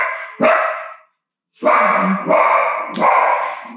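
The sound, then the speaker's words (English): A dog, Howie, barks loudly at a locked door as a staff member comes in, a sharp bark followed by a pause and then a run of rapid, insistent barks with no speech in between. “We just had one of our staff members come in and he barked at the door because we had it locked.”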